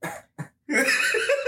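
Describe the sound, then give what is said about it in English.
A person imitates someone's weak, half-hearted fake cough: two short breathy bursts followed by a longer raspy, throaty vocal sound, fairly loud with no other speech. “It's like, stop this little fake coughing, like half, just cough, cover your mouth, cough, get it out.”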